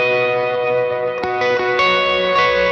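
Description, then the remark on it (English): Sustained electric guitar chords ring out with a wash of reverb, the notes blending into a dense shimmering tone, with a couple of sharp strums cutting through midway. No voices. “But yeah, so what's cool is that I'll cut the reverb there.”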